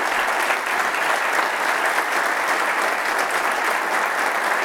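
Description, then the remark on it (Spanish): An audience applauds steadily, a dense wash of many hands clapping at a constant, fairly loud level for several seconds with no voices standing out. “Quisiera pedir algo que nunca lo he hecho, pero ¿por qué no le damos un aplauso y los honramos en este día?”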